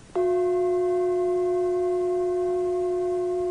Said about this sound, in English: The example given of the way that this connecting and sustaining works, it's like when I ring the gong, there's an initial contact and there's a continual ringing.